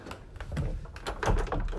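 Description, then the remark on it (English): A person pushes their own door shut, with a handful of quick knocks and clunks from the handle and frame before a final heavier thud. No one speaks. “I'm just gonna shut my door so that they don't hear me.”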